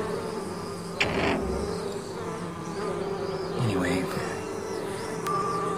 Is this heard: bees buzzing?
yes